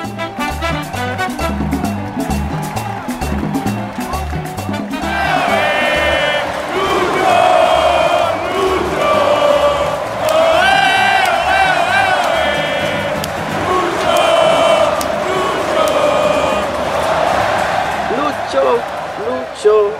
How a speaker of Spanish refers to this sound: dándole un poco de esperanza a Colombia y la fanaticada gritaba después de meter el gol.